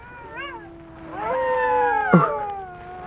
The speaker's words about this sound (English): Even in here, the sound of the wolves. Listen to them. The children of the night. What music they make.